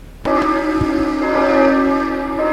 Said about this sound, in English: Well, those are the bells, all right.